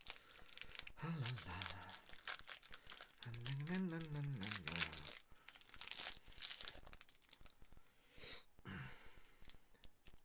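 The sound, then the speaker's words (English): Crackly crinkling of a Toffee Crisp chocolate bar wrapper being torn open, rustling in bursts over about ten seconds, with a voice murmuring and humming now and then alongside. “All right, here's my little toffee crisp. You can probably hear how little it is, can't you?”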